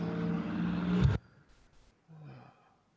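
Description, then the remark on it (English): A car pulls up and drives away, a loud, rushing engine rumble that swells for about a second and then cuts off abruptly as a microphone is switched off, followed by near silence and a faint breathy sound. “Speaking of long dialogue of nothing, I was getting ready to turn to you, and then I'm sure you heard that car start to pull up, and I turned my mic off before it got to the loudest part of that car driving away.”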